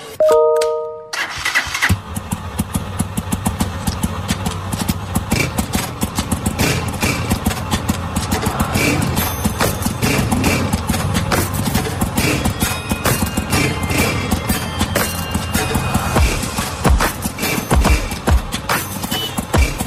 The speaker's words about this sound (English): okay, you bang the back of the box and you ping the bell and you ring a Santa Claus bell. And this is the musical results.